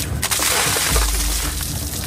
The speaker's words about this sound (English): Like in 2014, when Republican Representative Paul Ryan dumped water on Mitt Romney's head during the ALS Ice Bucket Challenge.